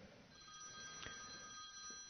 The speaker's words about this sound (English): Ooh, there sounds like a phone call.